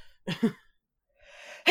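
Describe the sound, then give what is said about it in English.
A fairly loud sneeze: a brief voiced catch, a pause, a drawn-in breath, then a sharp explosive burst at the end. Nobody talks. “Excuse me. Bless you.”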